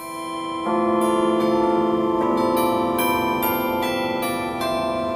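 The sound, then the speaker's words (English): Chimes of metal rods, specially tuned to sound like a cast bell, played on the roof of Geisel Library at UC San Diego, ring out loud, several bell-like strikes overlapping in a sustained, shimmering wash of tones, with new notes struck every second or so and no voices. “The way these chimes work, you can see that there's some metal rods specially tuned to sound as if they're a cast bell, and they really sound spectacular.”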